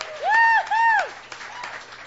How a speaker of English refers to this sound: Okay, everybody, please give your attention and your a nice warm round of applause to a first-timer here tonight